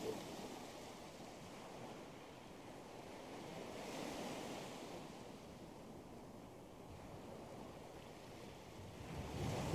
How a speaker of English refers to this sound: Just listen to the waves.